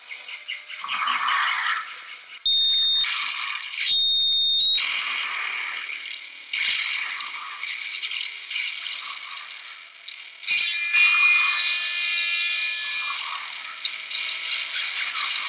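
Harsh, abrasive noise music plays with no vocals: dense rattling, grinding textures and shrill whistling tones that cut in and out abruptly, loud and unrelenting throughout.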